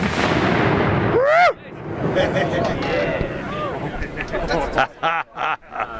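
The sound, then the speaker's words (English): A .50 calibre heavy machine gun is test fired: several loud, booming shots in quick succession near the end, after a stretch of steady background rumble with people's voices in the mix. “They're going to test fire the 50.”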